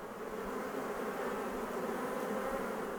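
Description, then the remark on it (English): A steady, dense buzzing of many bees swarming as they gather nectar from the white flowers of leatherwood trees, a continuous droning hum with no pauses and no voices. “Bees create a unique tasting honey when they gather nectar from the white flowers of the leatherwood.”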